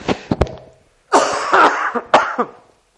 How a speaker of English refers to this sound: excuse me, I'm going to cough again.